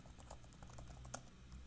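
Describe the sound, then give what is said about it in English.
Quiet, rapid tapping on a computer keyboard, a steady patter of soft key clicks with one sharper keystroke standing out, over a low background hum and no voices. “What are you typing, bro? We can hear you type.”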